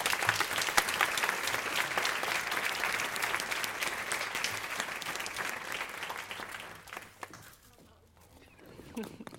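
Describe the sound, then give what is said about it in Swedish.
An audience applauds steadily with dense, continuous clapping for about seven seconds as two people are welcomed onto a stage, then the applause thins out and fades, leaving a few scattered claps and quiet background noise. “välkomna upp på scenen. Ge dem en applåd.”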